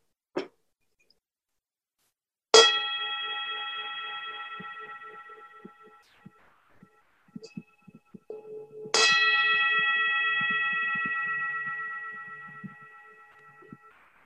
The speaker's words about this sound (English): When I ring the bell, don't open your eyes. Don't move. Just hear.